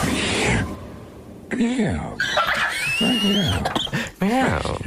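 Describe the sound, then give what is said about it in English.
A male voiceover voice imitates a cat, drawing out several meows in a row, each a low, rising-then-falling wail with breathy, growly edges and short pauses between them. “Someone put, like, a cat's meow. Right, but it's the male voice of voiceover.”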